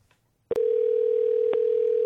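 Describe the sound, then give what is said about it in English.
After a brief quiet moment and a sharp click, a steady, loud electronic telephone tone starts and holds without pause, with another faint click partway through, as a phone call comes through. “Calling me back.”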